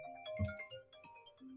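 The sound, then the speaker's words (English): A phone ringtone plays for an incoming call: a short, steady electronic melody of sustained bright tones, fairly quiet, with a soft thump near the start and no one talking over it. “Why is someone calling me? I can't believe you forgot to turn your phone off.”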